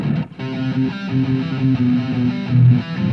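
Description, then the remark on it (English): A heavily distorted electric guitar plays a sustained, buzzing riff, the chords ringing out thick and gritty for a few seconds with no voices. “I could probably turn off all the distortion, but don't is your whole day.”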